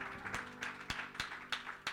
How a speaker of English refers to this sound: Let's give the Lord a hand clap of praise here tonight.